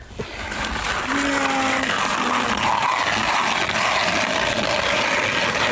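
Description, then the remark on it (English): A hand ice auger grinds steadily through ice, drilling holes where snow has been shoveled off the ice, a continuous rough scraping hiss that swells in the first second and then holds loud and even, with faint tonal squeaks near the start. “What's that sound? The ice auger.”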